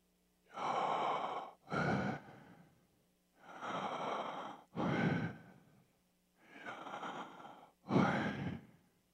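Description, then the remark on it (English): Slow, deliberate breathing: three cycles, each a long airy inhale followed by a shorter, forceful exhale, separated by brief quiet pauses. No one speaks. “And every human has always breathed the name Yahweh.”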